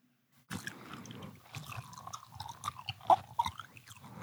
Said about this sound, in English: Here, do you want me to make some mouth sounds in the mic for a little bit?